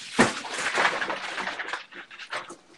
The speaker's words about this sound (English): My dog is getting going an early start. Nuts. he's, like, just running around, like, in the closet or something.